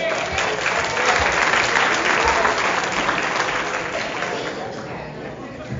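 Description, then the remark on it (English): A comedy show audience in an Elks Lodge in Lock Haven applauds steadily to welcome the MC, a dense wash of many hands clapping at a loud level that holds for several seconds and then begins to thin and fade slightly toward the end, with no one speaking. “Well, that ended quickly. Clap for me.”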